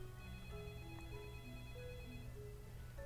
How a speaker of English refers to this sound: Oh, phone call.